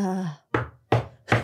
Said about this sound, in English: Goldine walked up to the Fabiano's door and knocked